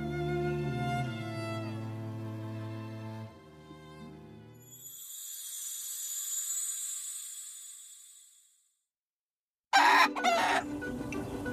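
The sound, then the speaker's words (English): A rooster crows loudly and drawn-out near the start, followed by a high, thin crowing call, a brief silence, then a burst of busy chicken clucking and squawking. “And it's a lot harder to catch a chicken than you might think.”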